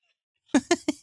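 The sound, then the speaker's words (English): A recorded fart breaks a brief silence with four quick, evenly spaced sputtering blasts, fairly loud and close, with no voices over it. “Yeah, I'll definitely have to send that fart to Randy.”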